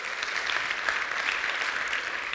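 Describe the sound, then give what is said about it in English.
A crowd gives the Lord a round of applause during a sermon on the resurrection, a dense, even wash of many hands clapping at once that holds at a constant level from start to finish, with no voices standing out. “Here's the, yeah, you can give the Lord a great round of applause.”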